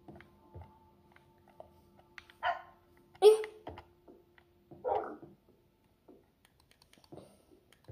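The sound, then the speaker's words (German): A video game puppy, at night, refusing to come inside, barks three times at spaced intervals, sharp, with a thin whimpering tone hanging underneath and faint keyboard clicks scattered in the background. “meine Hunde wollen nicht hier reinkommen. Das ist ein kleines Problem.”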